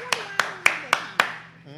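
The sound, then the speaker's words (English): Five sharp hand claps applauding Trilogy, maker of the Made in America cigar, in an even, steady rhythm, each crisp and fairly loud, with murmuring voices underneath and a brief vocal sound right after the last clap. “Applaud Trilogy one time.”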